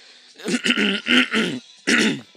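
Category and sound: human body sound, throat clearing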